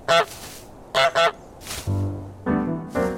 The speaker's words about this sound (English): It's a lovely morning in the village, and you are a horrible goose.